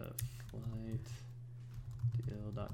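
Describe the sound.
Quick, uneven clicks of typing on a computer keyboard as someone types in the address of a flight deals blog, fairly quiet, with a faint voice murmuring underneath at times.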